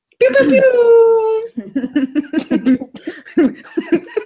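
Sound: voice imitating a foghorn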